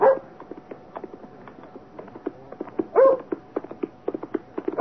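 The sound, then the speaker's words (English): A dog barks and yelps in short bursts, loud, with a few longer whining barks standing out among rapid, irregular clattering as a man on horseback gallops furiously along a lonely road with hard ground across a moor on a still January afternoon. “First the dog, and then a man on horseback, galloping furiously.”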